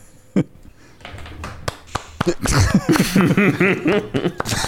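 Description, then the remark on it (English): A slow, quiet golf clap: a handful of soft, evenly spaced claps, followed by voices laughing and chattering over the top. “that's a very good golf clap.”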